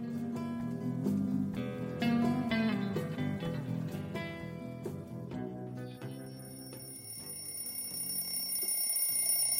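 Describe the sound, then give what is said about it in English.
An alarm clock rings at 2:05 a.m. with a steady, melodic electronic chime that repeats continuously for several seconds, fairly loud, with no voices. “It was 2:05 a.m., and the alarm clock didn't startle me because I was already wide awake and nervous as hell.”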